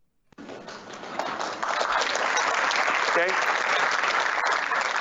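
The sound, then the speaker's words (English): After a brief pause, scattered clapping starts and then swells into steady, sustained applause from a crowd, with a few voices murmuring and calling out beneath it, following Howard Schultz's announcement that Starbucks will go into the NFT business. “That delayed applause fucking makes that.”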